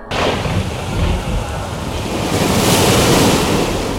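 Loud, churning sea waves of a storm crash continuously around a sea fortress in the middle of the sea while strong wind roars across the microphone, a dense, stormy wash of noise that swells slightly toward the end with no voices present.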